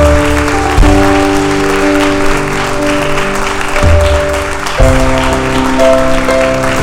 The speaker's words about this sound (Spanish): Alguien dele un aplauso al Señor. Dáselo fuerte.